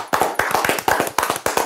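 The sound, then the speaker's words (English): Loud applause: many hands clapping at once in dense, irregular bursts of sharp, crackling slaps that keep going steadily for under two seconds, with no voices over them. “How y'all feel about that? I mean, yeah, clap it up. Clap it up.”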